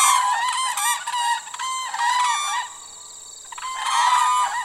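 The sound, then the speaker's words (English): Loud, bugling calls of whooping cranes, one of the world's most endangered birds, ring out in overlapping bursts, nearly continuous, with a brief lull partway through before another strong round of trumpeting, in wetlands where the Peace and Athabasca rivers run. No one speaks. “Here, one of the world's most endangered birds, the whooping crane, comes to dance, nest, and raise its young.”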